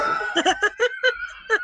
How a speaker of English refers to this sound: I'm sorry, I didn't mean to do that. Oh god, that snort just made my head all dizzy.